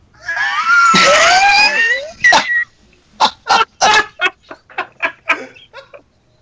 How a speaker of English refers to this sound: Yeah, well, I guess I bought too much goddamn deli meat because now my house is surrounded by wild dogs.